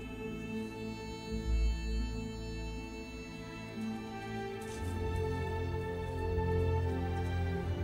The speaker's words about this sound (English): Thunder sound effects.